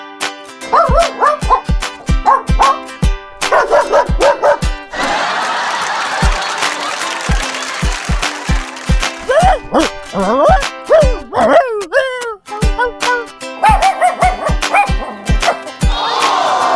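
Dogs bark loudly in rapid, choppy bursts, mixed with high yips and a few rising whines, close and busy throughout with only brief gaps between outbursts.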